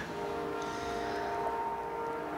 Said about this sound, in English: Dig like, those train sounds, man. That's right.